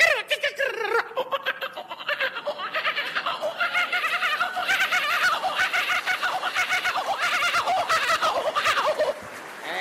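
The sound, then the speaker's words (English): A man's voice at Josh Frydenberg's campaign launch imitates a kookaburra call, a loud, continuous cackling, chortling laugh that rises in rapid pulsing bursts for several seconds before cutting off. “You know, Liberals will win because of Josh, but I'll just finish off with a bird call or two. Kookaburra.”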